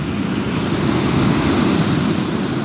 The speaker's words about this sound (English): The waves, the tide, coming out.